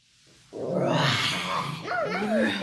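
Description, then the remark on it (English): A person's voice imitates a dinosaur roar: one loud, sustained, rasping growl that swells abruptly and holds for a couple of seconds, with pitch wavering near the end. “That's not a better roar. This is a better roar.”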